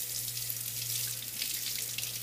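A faucet runs steadily into a sink, a continuous hiss and splash of water with a low hum underneath, as someone washes their hands. No one speaks.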